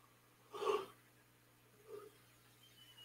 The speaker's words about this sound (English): Sorry, I'm yawning.